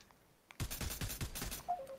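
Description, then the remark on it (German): After a brief quiet moment, loud video game gunfire erupts in a rapid, sustained volley of shots, with a short electronic tone sounding near the end. “Wer kommen die Schüsse?”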